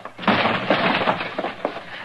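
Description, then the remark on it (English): A door to a man's house is forced open with a loud crash, followed by a sustained clatter of splintering wood punctuated by several sharp cracks over about two seconds, with no voices. “You're going to have to bust that door open if you want in, Mr.”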